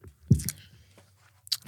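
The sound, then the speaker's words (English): Moist chewing of strawberry chocolate made with pepper, with a few soft crunchy bites, a cluster of mouth sounds early on and another brief burst near the end, with no talking. “The initial taste is good, but the aftertaste is bad. No, I would not. I wouldn't eat any more of that.”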